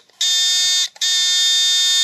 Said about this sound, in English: here are three beeps for Podrick's three friends